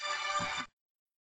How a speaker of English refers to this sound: I thought you were just playing a little tune. Yeah, sorry, my mobile was ringing.